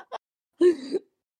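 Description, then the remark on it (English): A short, voiced cough, sounding a bit forced or throaty, comes after a tiny breathy click; it is moderately loud, with silence around it. “Cough.”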